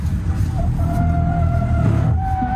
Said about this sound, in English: You hear the side by the tires screaming. It drifts! It really does!